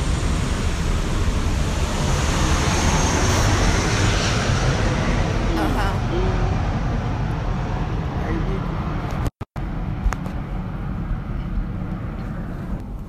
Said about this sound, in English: Wait, a plane is going by.